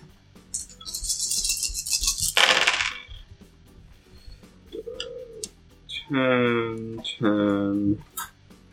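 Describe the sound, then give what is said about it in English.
A dense clatter of many dice spilling and rattling across a hard surface for about two seconds, ending in a sharp clack, followed by quieter moments and voices. “I don't wanna drop all the dice at once. Maybe what, another D6 if you got one.”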